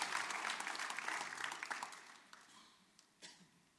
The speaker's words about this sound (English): So I just want to give you a hand of applause. Can we just give them a hand of applause, those who have given their hearts to the Lord?